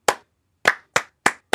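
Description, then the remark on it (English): Five sharp hand claps with no voices, clapping back the rhythm of a word in a game: a single clap, a brief pause, then four quick, evenly spaced claps, like the syllables of a spoken word. “Your job is to clap back the rhythm of the words that I say. So if I say antibacterial, you clap.”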